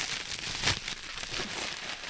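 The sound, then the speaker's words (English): Steady crinkling and rustling of a potato sack or plastic bag on the floor being opened to show black walnut nuts, with a sharper crackle partway through. No voices, just the handling noise throughout. “There are potato sacks and plastic bags on the floor.”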